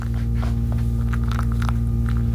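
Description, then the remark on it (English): A backup generator hums steadily and loudly, a deep droning tone that holds constant throughout with no talking, only faint scattered clicks and rustles above it. “But by the way, listen to that humming sound. Listen to that beautiful backup generator, just in case.”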